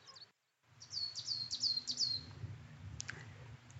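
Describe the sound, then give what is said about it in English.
A coal tit in a gnarled hazel hawthorn, in a grove of hawthorns and moss-covered rocks high on cliffs, gives a quick series of five or six high, thin chirping calls in a rhythmic run, followed by a couple of sharp higher notes, over a low outdoor rumble. “So I tracked this bird all the way into this wonderfully gnarled hazel hawthorn, and it is a coal tit.”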